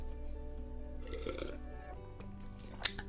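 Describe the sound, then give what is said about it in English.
Someone quietly sips a drink of water, with soft slurping and a brief sharp swallow click near the end, over a low steady background hum. “Sips water. That was delicious.”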